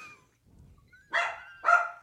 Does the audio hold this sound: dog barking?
yes